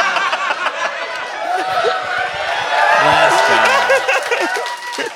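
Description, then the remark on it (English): Loud, steady live audience applause, the first applause break of the night, prompted by Matthew Goodwin's words, mixed with cheering and scattered laughter, a dense wash of clapping that swells slightly midway through with a few voices rising above it. “All right, first applause break of the night goes to, unfortunately, Matthew Goodwin.”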